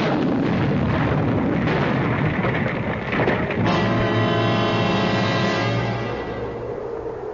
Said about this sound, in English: When suddenly there was a flash of light and a loud explosion.